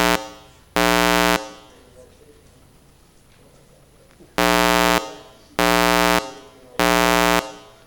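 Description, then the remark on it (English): A loud, harsh timer buzzer signalling the time remaining blares in four short blasts: one early on, then after a pause three more in a steady row, with quiet room noise in between. “So that means that two buzzers means you've got 10 minutes.”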